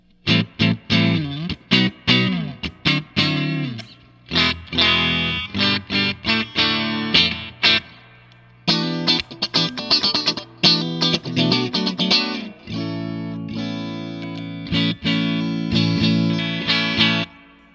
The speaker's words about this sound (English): Okay, so here's just the guitar. I'll just run through some pickup combinations here real quick.